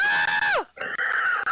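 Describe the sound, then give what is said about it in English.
A man lets out a loud, shrill, high-pitched scream that drops in pitch, then after a brief break screams again just as piercingly, alone. “screaming like a little girl.”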